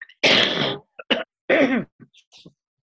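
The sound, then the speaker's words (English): A person with the flu gives a loud cough with a long harsh first burst, then shorter raspy hacks and throat-clearing sounds, ending in a couple of faint breathy catches. “And I'm gonna cough because I have the flu, please excuse me.”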